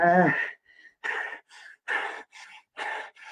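Heavy, rapid breathing from exercise, with a heart rate of 160 beats per minute: about seven hard, raspy breaths in quick rhythm, roughly two per second, opening with a strained, voiced gasp. No talking.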